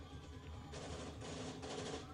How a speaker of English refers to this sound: Just taking out all the pigeons. They're shooting straight up at windows, but yet there's no crashing sounds.